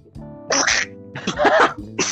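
Three harsh, breathy coughing bursts from one person, fairly loud, with short pauses between them and the middle one longest. No one speaks.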